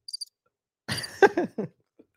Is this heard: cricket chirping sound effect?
yes